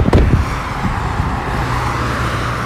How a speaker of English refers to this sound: Listen to the cars whizzing by.